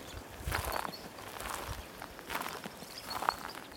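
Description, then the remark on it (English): Steady footsteps crunch along a rocky mountain trail among pines and glacial boulders, about four unhurried strides at an even walking pace, fairly soft, with faint outdoor ambience and no voices. “Birds move through willow trees near the water as I hike on.”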